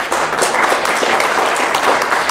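Steady, dense clapping from several hands fills the stretch, loud and continuous like a burst of applause, with a faint voice slipping in underneath.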